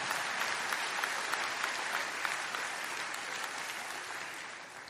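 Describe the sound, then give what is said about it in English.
An audience claps at the speaker's urging, steadily for the full stretch, a dense wash of many hands at an even, moderate loudness that eases off slightly toward the end. No one speaks over it. “clap your hands, y'all.”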